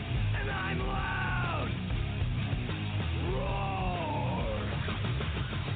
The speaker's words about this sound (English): Like early 90s heavy metal hard. I'm yelling and screaming.